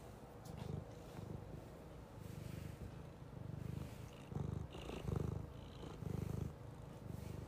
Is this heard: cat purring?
yes